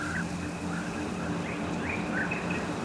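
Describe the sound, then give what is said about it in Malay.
Steady trickling water at the edge of a terraced rice paddy by a glamping resort, a continuous soft rushing wash, with short repeated bird calls chirping over it every half second or so. “Suara gemercik air di tepi sawah semakin menenangkan hati dan pikiran.”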